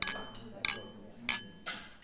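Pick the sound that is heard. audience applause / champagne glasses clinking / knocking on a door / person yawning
champagne glasses clinking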